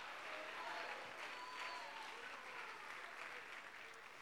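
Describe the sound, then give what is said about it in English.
An audience at a church revival claps steadily and loudly for a few seconds while scattered voices shout hallelujah over the applause, continuous throughout. “Can you clap your hands once again, and can you shout hallelujah?”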